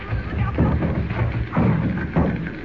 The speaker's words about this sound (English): Jimmy, look out! The door's coming in!